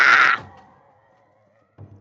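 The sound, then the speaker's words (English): A voice lets out one harsh, raspy shriek imitating a gecko's scream, loud and bright for about half a second, then trails off into a faint tone before a low thump. “I'll gecko scream at it.”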